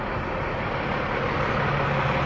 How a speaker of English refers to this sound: Anyhow, I'm crossing Carrollton. There's a bus on the corner.